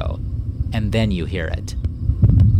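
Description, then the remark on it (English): A man speaks briefly, then a sudden deep, rumbling boom rolls in at the end, loud and low like a short peal of thunder: the sound of an earthquake, played from an old tape recording. “It's the sound of an earthquake.”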